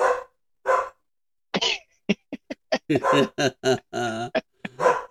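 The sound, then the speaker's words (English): A dog barks in a quick, irregular series of sharp barks, some short and clipped, others longer and more yelping, with brief pauses between bursts. “I think it's my dog. It is your dog.”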